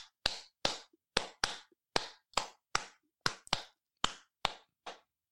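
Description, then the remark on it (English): A dozen or so sharp hand claps in a deliberate rhythmic pattern to demonstrate rhythm in music, some falling in quick pairs, each crisp and dry with silence between them and no talking. “Just me clapping once. That's not music.”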